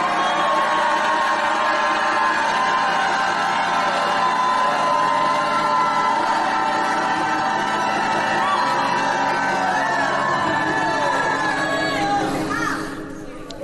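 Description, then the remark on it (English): A large audience lifts their hands and shouts and cheers together in a loud, sustained roar of overlapping voices, whoops and cries filling the space for over ten seconds before tapering off at the end. “Well, lift your hands and shout like you never shouted in your life.”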